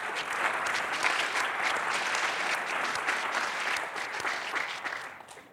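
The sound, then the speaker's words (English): An audience at the National Constitution Center applauds panelists from Cato, AEI, Aspen, the Center for American Progress and the ACLU, a dense, sustained wash of clapping that holds at an even level for several seconds, then thins and fades at the end. No voices stand out. “A big round of applause.”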